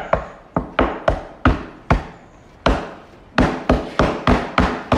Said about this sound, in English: We're gonna knock on the door. Knock on the door.